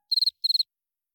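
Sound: single cricket chirping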